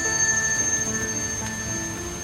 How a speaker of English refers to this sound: The thunder booms, lightning crashes, rain falls, and the group hears the echoing from amidst the gravestones of a high-pitched bell.